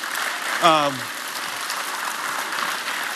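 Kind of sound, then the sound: crowd, audience clapping hands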